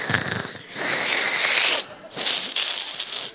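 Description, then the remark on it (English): A voice imitates the wheezy, labored breathing of a sick five-year-old daughter: two long, raspy, hissing breaths, each drawn out for about a second with a brief pause between. “She's breathing like a really long bong hit.”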